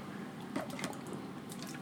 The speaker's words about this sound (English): You can hear me opening my water as well. You know, that ASMR, it's a real thing.